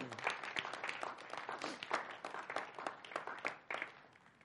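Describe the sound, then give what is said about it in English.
A crowd applauds with steady, dense clapping for several seconds, many overlapping hand claps forming a continuous crackling wash at a fairly even level, with no one speaking. “Actually, why don't you go ahead and give her a round of applause for...”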